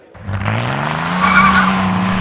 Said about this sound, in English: Morty screeches his BMW down Wilshire Boulevard away from Spago as Jimmy Buck is confused.